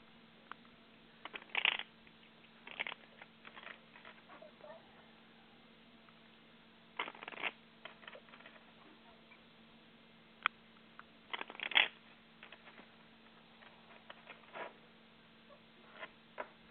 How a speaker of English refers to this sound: Yeah, the longest part is shuffling these cards.